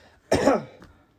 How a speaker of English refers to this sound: No, I'm coughing. Sorry, I've been coughing.